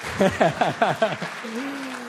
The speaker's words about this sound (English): Fantastic. Would you give these guys a huge round of applause?